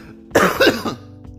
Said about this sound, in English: You might hear me cough a bit on this episode. Luckily, it's not as bad.